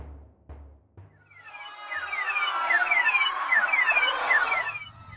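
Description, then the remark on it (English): Alarm klaxons wail as an Imperial Invasion Force enters low orbit, a dense, overlapping wash of repeated falling tones, swelling in after a few low thumps and holding loud and steady to the end. “I assumed that's what the alarm klaxons and panicked screaming were about.”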